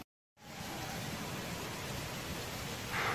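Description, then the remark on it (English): Heavy rain pours down in a steady, dense hiss, loud, starting abruptly after a brief silence and continuing without pause, as rain clouds open over a valley. “The rain clouds that threatened to rain have properly sprung.”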